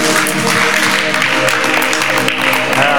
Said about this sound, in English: Come on, give the Lord a better hand clap.